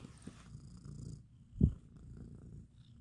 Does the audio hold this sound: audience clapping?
no